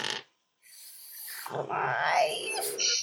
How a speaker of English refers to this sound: you hear nothing beyond the screeching wailing of the wind and the screaming of this Z-Drake.